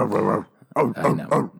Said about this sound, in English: Okay. Oh, you get it? You get what my dog barking is,